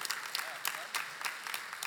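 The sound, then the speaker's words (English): An audience claps steadily, a dense patter of many hands with sharper bursts every fraction of a second, at moderate volume with no voices over it. “Why are you, I don't know why you're laughing or clapping.”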